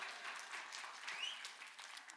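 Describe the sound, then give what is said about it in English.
A crowd claps steadily, a dense wash of many hands at an even level with no one speaking over it, sustained for a couple of seconds. “So go ahead and just everybody applaud.”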